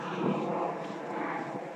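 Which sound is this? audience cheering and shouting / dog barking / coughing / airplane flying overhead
airplane flying overhead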